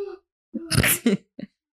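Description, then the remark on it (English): Heavy, breathy huffs right up against the microphone: one long loud gust followed by a shorter burst and a small faint puff, with no talking. “Why are you breathing hard, bro?”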